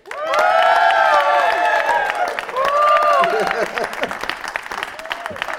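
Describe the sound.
A crowd bursts into loud, sustained applause with cheering and whooping voices rising over the dense clapping as James Cleverly is welcomed onto a show, the noise easing slightly toward the end.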